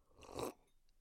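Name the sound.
sipping water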